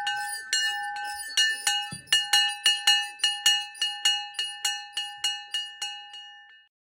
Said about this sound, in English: I think I heard it. What? The bell.